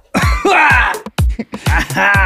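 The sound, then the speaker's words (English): A run of harsh, throaty coughs, several bursts in quick succession with short gaps between them, loud and strained. “And of course, without all the coughing in it, though, of course.”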